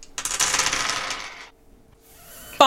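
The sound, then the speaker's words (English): Dice for a deception roll in a tabletop game (2 yellow, 3 green and 2 red dice) clatter and tumble across a hard tabletop for over a second in a dense rattling burst, settle into quiet, then a sharp click lands at the end. “So I have 2 yellow and 3 green for deception.”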